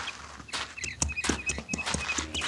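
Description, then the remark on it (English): A horse's hooves clip-clop in a steady walking rhythm, a string of crisp knocks over a faint background with a high, thin chirping tone. “After I water my horse, you can tell me how to get to that place.”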